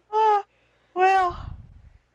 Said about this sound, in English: I'm just yawning.